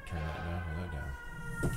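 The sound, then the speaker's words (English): Fire engine sirens in Brooklyn wail steadily from outside, a sustained tonal sound holding at moderate loudness with a brief rise near the end, no voices over it. “Just in time, the fire engines.”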